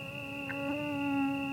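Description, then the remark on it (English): A mosquito's thin, steady whine hums continuously, growing slightly louder as it seems to close in, with no voices present. “You'd be hard-pressed to find someone who welcomes the sound of a mosquito drawing near, but, annoyance aside, they're the vectors of all manner of maladies that plague human populations worldwide.”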